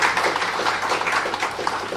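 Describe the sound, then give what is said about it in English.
A crowd applauds the volunteers of a program, many hands clapping in a dense, even wash of sound that stays fairly loud throughout, with no one speaking over it. “A big round of applause for all the volunteers.”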